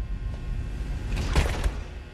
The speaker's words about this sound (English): I'm entering one of the growth chambers at the Johnston, Iowa campus. The door's closing.